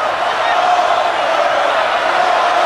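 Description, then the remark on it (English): A wrestling crowd erupts at the opening bell of the Hogan versus Goldberg match in loud, sustained cheering, a dense steady roar of many voices that holds at full strength without letting up for the whole stretch. “The fans erupt at the bell.”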